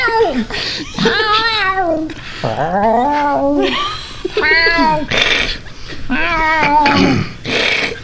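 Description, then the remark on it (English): A voice imitates shrill horror-film stabbing screeches as a reference to Psycho: a run of loud, piercing squeals that swoop up and down in pitch, repeated in quick bursts for several seconds. “making beeping noises, but using his hands suggestively.”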